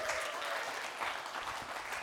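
An audience claps steadily for two people being called up to the front, a dense, even wash of many hands at a constant moderate loudness with no voices standing out.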